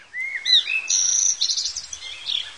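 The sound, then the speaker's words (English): Birds chirp and sing outdoors, a run of bright whistled notes and quick trills overlapping one another, with no voices over them. “Should I do more of these recordings with the birds?”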